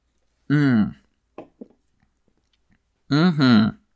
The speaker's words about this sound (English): So I'm going to take another sip. Here we go.